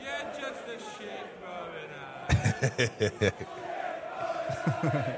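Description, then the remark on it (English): A large cricket crowd in the Hollies stand chants in unison at bowler Nathan Lyon, with loud, rhythmic shouted bursts of "You're just a shit Moeen Ali" in the middle, surrounded by a steady roar of many voices. “And then the last clip I'll play is the crowd giving it to the goat, Hollies, Nathan the Holly Lyon.”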